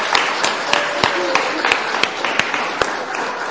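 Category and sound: crowd, round of applause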